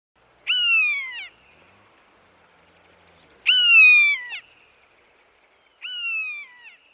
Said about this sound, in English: But I think for them, feeling in this rather sort of nature depleted local area, the one bird which just really reminded me that the wild is there is the cry of the buzzard.